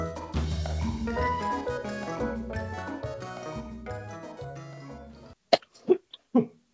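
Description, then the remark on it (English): Music plays for several seconds, then stops abruptly; three sharp coughs follow in quick, uneven succession. “I might have to cut out some coughing.”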